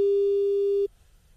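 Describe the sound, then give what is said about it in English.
A telephone busy tone after a call drops: a single loud, steady electronic beep held for nearly a second, then cut off, leaving faint low background noise on the line. “Oh, dear, we're just having challenges with that phone.”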